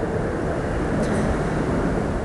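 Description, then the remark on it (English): A steady, even roar of ocean waves at a seawall blended with the low rumble of vehicle traffic passing on a bridge deck above, dense and unbroken throughout with no voices. “There's sounds of the ocean and sounds of vehicles above us.”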